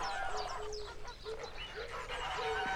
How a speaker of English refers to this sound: I think I can hear a goose, Miss Honeychurch. You're right. There are lots of geese here.